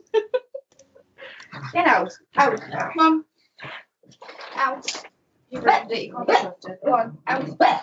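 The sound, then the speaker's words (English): Dogs in a room bark and whimper in a series of short, irregular bursts, some yelps rising into higher whines between quieter gaps. “Oh, to be honest, these dogs again, let me just throw them all out of the room because they're doing my head.”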